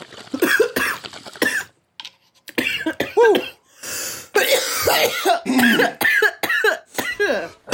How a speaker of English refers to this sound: It's better to cough. It's like makes you 10 times more higher.